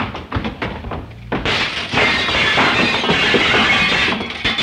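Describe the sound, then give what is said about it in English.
A few scattered knocks and clinks, then a loud, sustained crash of glassware shattering and tumbling, bright and jangly, filling the last three seconds with no voices. “Think nothing of it. Just a little glassware.”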